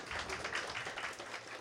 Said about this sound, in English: Yeah, you can applaud for her. Don't be shy.